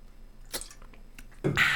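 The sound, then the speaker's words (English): A person pauses to take a sip of a drink: a soft slurping sip around the middle, followed by a brief louder swallow or gulp near the end, with faint wet mouth noises and no talking. “I'm going to pause here for a sip.”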